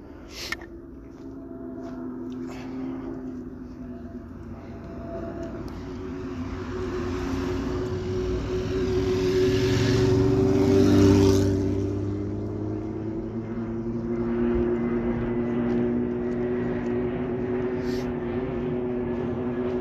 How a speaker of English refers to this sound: Big aeroplane and a fast car coming past.